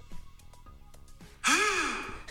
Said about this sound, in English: Every time that someone says something insane, you just have a gasp. You should just play this right here. Try that again.